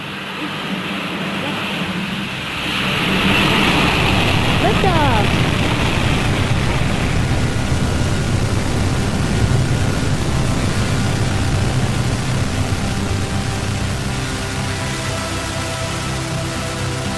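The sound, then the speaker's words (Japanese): A rocket's main engine ignites into a dense, rushing roar that swells after a couple of seconds and holds steady and loud, with a few brief whooshing sweeps early in the blast. “メインエンジンスタート。 メインエンジンイグニッション。”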